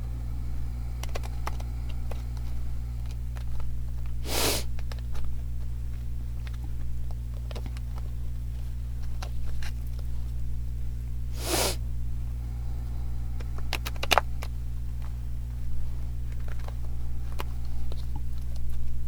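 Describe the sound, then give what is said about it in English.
Tarot cards being shuffled: two brief, crisp riffling bursts separated by several seconds, with scattered light clicks and taps in between over a steady low hum. No one speaks. “All right, the cards had a tough time shuffling.”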